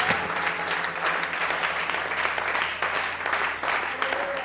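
A church audience breaks into sustained applause, giving the Lord a clap during a sermon: a dense, steady wash of many hands clapping at once that holds fairly loud throughout, with no clear rhythm and faint voices mixed in.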